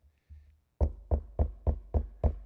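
Six firm knocks on an orphanage door by a baker, in a steady, even rhythm and fairly loud, preceded by a couple of faint low thumps.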